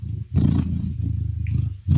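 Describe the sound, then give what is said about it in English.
A pet cat named Tony lets out a long, low, rumbling yowl that swells and holds steady for over a second with a gritty, growl-like tone, then breaks off briefly and starts again. “I'm here with Pat and Brando and Brandon's cat, Tony.”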